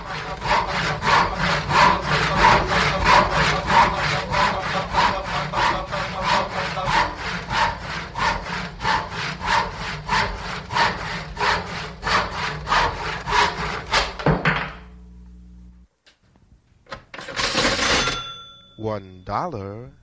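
A hand saw cuts through wood in steady, rapid back-and-forth strokes, loud, for about fifteen seconds before stopping abruptly, heard as a sound effect halfway through a song on a record; a short, different rasping sound follows near the end.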